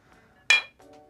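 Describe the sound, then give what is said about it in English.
A single bright clink of glasses of rum and eggnog tapping together in a holiday toast, sharp, ringing briefly before fading, with faint tonal hum around it. “Here, cheers.”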